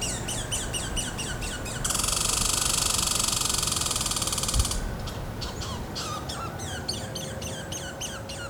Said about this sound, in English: On our walk, you can hear the birds chirping and the wind blowing through the trees, making for a peaceful and calming experience.